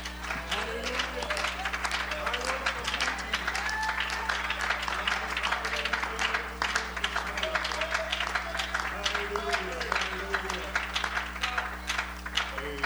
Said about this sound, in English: Let's just go ahead and give the Lord a hand clap of praise this morning.